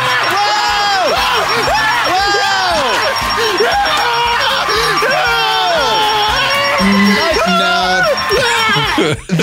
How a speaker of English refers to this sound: But then when you listen to the audio of it. It's hard to tell. I can't tell if these are screams of joy or screams of pain. Agony.